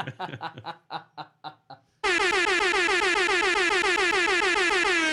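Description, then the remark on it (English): Short bursts of laughter give way to a loud, blaring air horn that holds steady for about three seconds, its harsh, buzzing tone wavering slightly before cutting off. “I was told on our last episode I did too many air horns, so this one's for you.”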